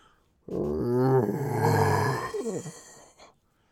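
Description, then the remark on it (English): A horrifying monster howl in the darkness, loud and drawn out with a guttural, growling edge, swells then breaks into rough snarling before fading after about three seconds. No one speaks. “You can't quite tell what's going on, but you hear a horrifying howl in the darkness.”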